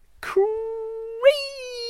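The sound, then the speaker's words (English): A shed door creaks open in one long, drawn-out squeak, holding a steady moaning tone before stepping up higher near the end, after a brief scuffing rattle at the start. “Let's open the door to the shed.”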